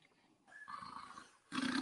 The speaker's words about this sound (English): Snore. And you can see his belly. Yeah, he's snoring.